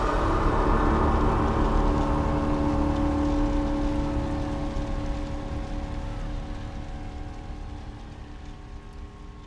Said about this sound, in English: where they huddled on the bank with their heads down in the drizzling rain.